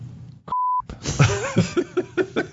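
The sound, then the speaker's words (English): A short, steady censor bleep cuts in loudly for about a third of a second, abruptly replacing a word, then a voice carries on with rhythmic vocal sounds right after. “I have to take that out. Just beep him.”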